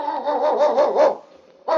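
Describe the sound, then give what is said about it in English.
A husky sled dog, Yukon King, lead dog in the 1951 radio show Challenge of the Yukon, gives a loud, drawn-out run of wavering barks and yowls, clear, then breaks off briefly before starting up again. No one speaks. “It's Yukon King, swiftest and strongest lead dog of the Northwest, blazing the trail for Sergeant Preston of the Northwest Mounted Police in his relentless pursuit of lawbreakers.”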